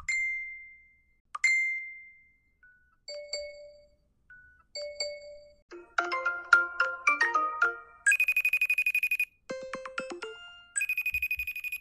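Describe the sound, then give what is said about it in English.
A rapid montage of phone alert tones and ringtones: short chimes and dings, then a busy melodic ringtone, buzzy trilling rings and electronic bleeps, all bright and without any talking. “How many of y'all checked your phones in a panic because you thought you had a notification?”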